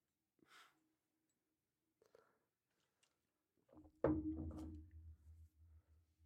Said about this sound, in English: Wonder who's knocking at the door.